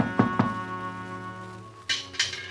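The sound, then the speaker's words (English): Two firm knocks on the front door at Miss Evelyn Gardner's address, a pause, then two sharper raps, each crisp, over a steady sustained musical tone with no voices. “No one answered the door, but I heard someone in the back.”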